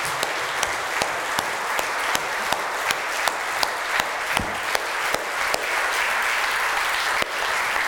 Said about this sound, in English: I would like for you to stand one more time and let's just honor those who serve us in our military. Can we give them applause? Can we just thank the people who serve us?